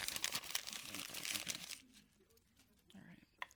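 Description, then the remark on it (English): Loud crinkling and crackling of paper being crumpled, to start again with fresh paper, for nearly two seconds, then quieter rustling with a faint voice murmuring near the end. “Let's start again. Okay. Fresh paper.”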